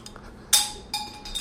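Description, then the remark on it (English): A small glass lens pops out and clinks sharply against a hard surface, a bright ding followed by a second lighter ding and a faint third tap, with no talking. “And excuse me, that was my glass lens popping out. So you got to hear that nice little ding, ding, ding.”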